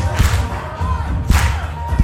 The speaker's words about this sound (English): Remember the clapping? Got a bit of the clapping? Yeah? It'd have been good if we learned the dance, but we did. Clapping. Can you clap? Can you clap? There we go.